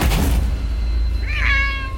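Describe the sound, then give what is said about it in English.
A person imitates a cat's meow, voicing a small black cat in a role-playing game, one short, clear, rising-then-falling mew, preceded by a brief muffled thump and a low rumble. “I'm gonna turn into a cat”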